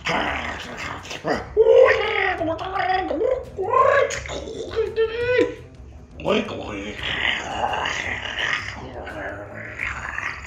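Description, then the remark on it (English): Wolves howl in a few rising and falling wails, followed by several seconds of rough, continuous growling and snarling, all fairly loud with no talking. “Sounds like a few wolves are standing just above you.”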